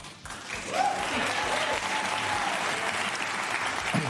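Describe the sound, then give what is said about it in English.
A crowd breaks into loud, steady applause that swells within the first second and keeps up evenly for several seconds, dense clapping with a faint whistle rising briefly near the start. “New rule, we must all applaud the Pope for starting a conversation about ending celibacy for priests.”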